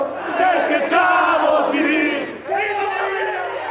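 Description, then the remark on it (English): A large crowd of opposition protesters cheers and shouts loudly as Evo Morales steps down, many voices overlapping in a dense, sustained roar that briefly dips before swelling up again with high, excited yells. “Later in the day, he stepped down, prompting cheers from opposition protesters.”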